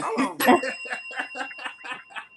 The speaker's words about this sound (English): Jimmy, you got to be on time with the bell, Jimmy. You got to ring it.